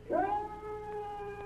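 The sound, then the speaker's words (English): A lone coyote howl: one drawn-out wail that swoops up quickly, then holds a steady, reedy pitch for over a second, with no voices around it. “I hear a little something. Sounds like a coyote.”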